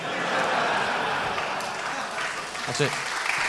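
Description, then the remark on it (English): An audience claps steadily, a dense, even patter of many hands that holds throughout. A brief voice cuts in faintly near the end. “Why are you clapping?”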